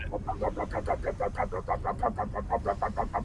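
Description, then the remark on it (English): A small one-horsepower boat motor putters along steadily, its rapid even chugs repeating about six times a second with a buzzy mid-pitched tone and a low rumble underneath, with no voices. “It sort of sounds like one of those, like, little one-horsepower, you know, boat motors.”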